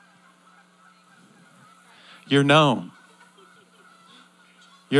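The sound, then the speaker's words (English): A loud, harsh goose honk breaks out midway, a brief burst of a couple of calls, and another honk starts right at the end, over a low steady hum and faint speech. “They're honking. They're honking.”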